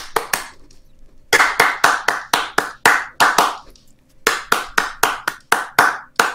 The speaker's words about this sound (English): All you do is clap out the rhythm of the melody.